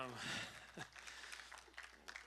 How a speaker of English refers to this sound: Didn't really need applause. I was just letting you know who we were, but thank you for that.